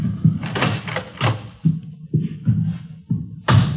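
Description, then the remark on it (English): A door is handled: a series of low thuds and scraping bursts as it opens, then bumps and settles shut, with a final louder clunk at the end. “I'll get the door.”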